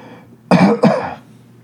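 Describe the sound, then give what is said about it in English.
Two quick coughs in succession from a tickle in the throat, loud and raspy with a throaty edge, standing alone against a quiet background. “I'm just going to cough real quick to hold on.”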